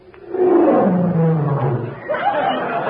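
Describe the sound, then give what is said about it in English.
A big cat lets out a loud, drawn-out roar that slides downward in pitch, followed by a second rumbling growl near the end. “That's the Tigris. It roars.”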